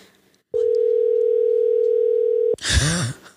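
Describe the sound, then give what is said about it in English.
One steady, even electronic ring tone from an outgoing phone call lasts about two seconds, loud and clear, then cuts off as a voice starts speaking. “Is it ringing? It's ringing.”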